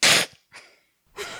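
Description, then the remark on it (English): A person imitates the noise cockatiels make when angry, a noise they also make at their cats when mad, with three harsh, breathy hisses: a loud opening burst, a softer second one, then a third that swells again after a short pause. “I can do the noise that I learned that cockatiels make the other night when they're mad, which is...”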